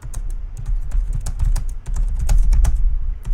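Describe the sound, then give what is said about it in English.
Rapid, uneven clicking of keys on a computer keyboard while using Skype, fairly loud, with a steady flurry of taps and no voices. “Typing and Skyping, fuckers.”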